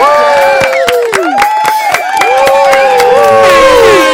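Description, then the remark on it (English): A loud crowd cheer sound effect played from a soundboard at Coffee Talk Studios: many overlapping voices whoop and holler with rising and falling pitches, punctuated by sharp claps, with high whistles joining near the end. “Can you do the cheer sound effect too?”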